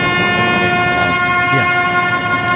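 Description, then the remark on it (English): The loud horn of an amusement ride, similar to a diesel train engine's horn, blares continuously for the whole stretch as the ride reaches maximum speed, its rich chord sitting over a low mechanical rumble, with no voices. “This ride is also named for its loud horn, which is similar to that of a diesel train engine”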